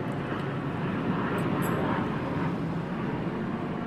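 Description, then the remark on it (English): A steady, low internal combustion engine roar fills the whole stretch, like an airplane droning overhead, continuous and fairly loud with no voices. “I don't hear people very much. It's the internal combustion engine.”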